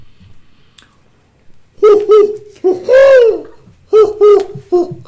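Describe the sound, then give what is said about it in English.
A series of clear owl hoots: two short hoots, then a long drawn-out one that swells and falls, followed by three more quick hoots, standing alone against a quiet background. “Watch out for that owl.”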